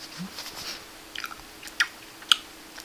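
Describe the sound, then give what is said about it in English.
Quiet, wet chewing with a few sharp crunchy bites standing out near the end, irregular and fairly soft, with no one talking. “Bro, I'm eating.”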